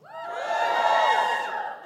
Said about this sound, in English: Let's see who we've got in the room. Give me a cheer if you're working class.